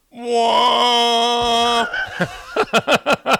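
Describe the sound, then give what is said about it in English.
A voice imitates a foghorn with a long, steady, low droning blast, then wavers in pitch and breaks into five short rhythmic pulses that sound like chuckling. “Foghorn's got a little crick in it. He is a foghorn.”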